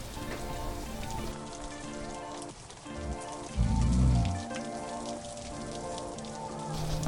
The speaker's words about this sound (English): She stretched, and then she threw herself onto her bed, letting the noise of the rain guide her to sleep.